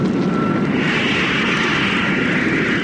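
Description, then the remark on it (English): A loud, steady aircraft engine roar builds up and fills the whole recording, a broad rushing drone with a faint tonal hum in it and no voices. The aircraft's motor is being cut in to lift the nose and gain height. “Then we'll cut in the motor. I'll lift our nose and gain height.”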